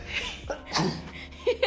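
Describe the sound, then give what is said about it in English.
A single sharp sneeze bursts out midway, a brief noisy blast, with soft breathy vocal sounds before and short murmurs trailing after it. “I'm gonna sneeze first.”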